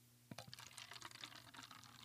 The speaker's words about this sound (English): All right, can you hold the cup up for me so I could pour it right to the mic? All right. It's quiet with the keys. All right. Beautiful. All right. I'm going to do the pouring. All right, pour us all a little bit.